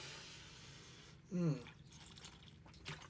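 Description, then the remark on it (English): A single short, wet sip of Vita Coco coconut water, lasting under half a second against a quiet background hiss. “Taking a quick sip of my Vita Coco water.”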